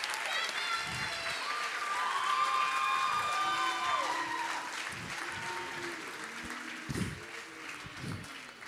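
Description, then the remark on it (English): An audience applauds steadily for several seconds as panel members come up onto the stage, a dense wash of clapping mixed with high whoops and cheers that gradually thins out toward the end. “Yeah, give them a hand.”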